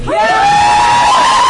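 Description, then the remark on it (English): A crowd cheers loudly, voting that a Harry Potter character should live, with one high, sustained whoop rising slightly in pitch above the broad roar of many voices for the whole short burst. “Everybody who says live, cheer.”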